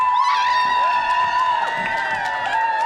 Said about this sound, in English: But we have to do... No, now we do the cheering. So, audience, it's up to you.